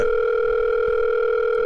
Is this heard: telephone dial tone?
yes